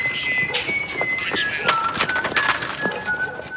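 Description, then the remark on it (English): The character Omar from the TV series The Wire, played by Michael K. Williams, whistles the tune A-Hunting We Will Go in slow, long, clear, high-pitched notes that step up and down, over a busy background of clattering and sharp knocking sounds. “Williams, people, those of you who've watched The Wire know that is Omar whistling a Hunting We Will Go.”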